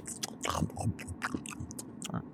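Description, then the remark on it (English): Horses Ice Cream and Rainbow chewing and eating plain bagels, with repeated crunchy bites and wet mashing sounds in an irregular rhythm, moderately loud against a quiet background. “Ice cream and Rainbow happily eat the bagels.”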